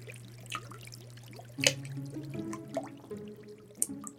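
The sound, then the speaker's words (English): Sticky hot syrup boiling over from a 40-gallon kettle trickles and drips steadily through floorboards onto patrons below, in a factory above a saloon on Decatur Street, Atlanta. Scattered wet plops and a couple of sharper splats stand out, moderately quiet over a low steady hum, with no voices. “His 40-gallon kettle of hot syrup would boil over, and the sticky mixture dripped through the floorboards right onto the patrons below.”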